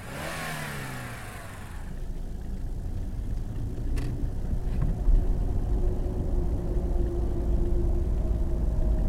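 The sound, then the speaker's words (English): A car accelerates with a rising engine rev, then settles into a steady low rumble as it drives on, with no voices. “Stop the car for a sec.”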